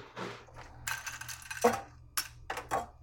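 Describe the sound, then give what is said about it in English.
Fresh ice cubes drop into a stemmed glass to chill it, making a string of bright, irregular clinks and rattles, with a few sharper knocks toward the end and no talking. “So I put some ice in the glass and that's what makes it chilled.”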